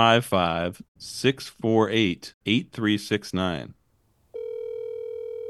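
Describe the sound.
A person talks for a few seconds, then after a brief pause a steady electronic telephone tone starts and holds, sounding like a call placed over a speakerphone.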